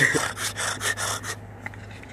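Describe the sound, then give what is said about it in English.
A wasp chewing off a piece of flip-flop: a run of about five quick, dry rasping scrapes in a steady rhythm, then near silence with a faint low hum underneath. “That wasp literally took a chunk of that fucking. They do that. I don't know why. It's for their nest.”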